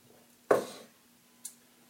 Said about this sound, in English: Another sip of coffee there.